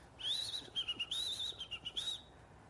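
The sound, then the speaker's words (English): A person whistles a quick, warbling imitation of a little bird singing: a bright, high trill of rising and falling notes in short bursts, clear, lasting about two seconds with no talking. “And it's true, there was a little bird way up in the top of the tree singing to the man.”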